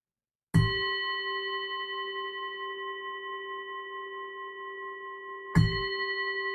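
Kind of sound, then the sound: signal or alarm, bell being rung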